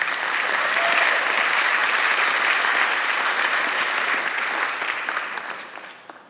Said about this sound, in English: They didn't clap long enough to make it less awkward. I know. I even told them.